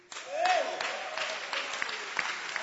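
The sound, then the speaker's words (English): A church audience claps hands in a steady, dense patter that runs the whole time, appreciating God for their prophet, the bishop, with voices mixed into the applause and a brief rising-and-falling vocal whoop near the start. “Are you clapping hands for you?”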